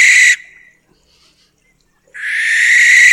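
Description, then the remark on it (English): Two harsh, hissing screeches from a barn owl, loud, separated by a brief silence; the second screech is longer and rasps steadily until the end. “This is a barn owl.”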